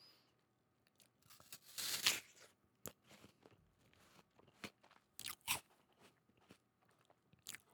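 Someone bites into a crisp apple with a loud, juicy crunch, then keeps chewing in a series of sharper, irregular crunches. No one speaks.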